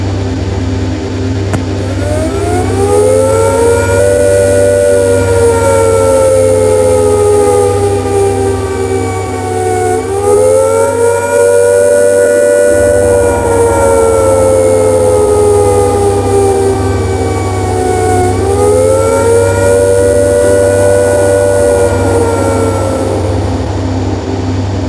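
A civil defense air attack warning siren, sounding to signal that attack is imminent, wails loudly and continuously, its rich harmonic tone repeatedly rising and falling in slow cycles every several seconds. No voices are heard.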